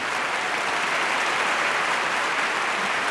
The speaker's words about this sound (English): I accidentally found applause.